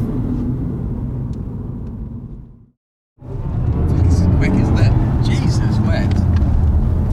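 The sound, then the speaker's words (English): Steady low road rumble and tyre noise inside a BMW i4 M50 electric car (543 brake horsepower) cruising along a country road, cutting out to silence for half a second midway before resuming, slightly brighter. “We are in the BMW i4 M50.”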